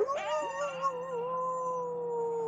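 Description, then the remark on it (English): A person lets out a long, drawn-out imitation of an animal howl, starting with a wavering rise and then holding a steady tone for a couple of seconds, with no talking. “Oh, God, you're going to start a howl.”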